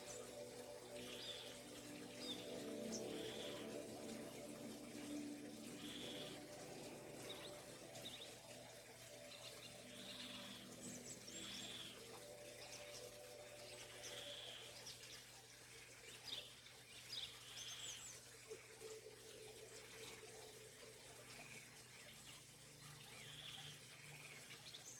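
A spotted fox drinks at a riverbank over a steady wash of flowing water, while birds chirp in short, repeated calls in the background; no one speaks.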